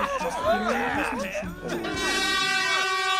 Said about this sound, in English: What was that? Sir, it's an air horn. I wanted your attention.